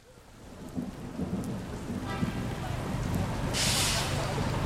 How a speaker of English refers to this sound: It's another rainy day in New York City. Another rainy day in what's been a very wet year.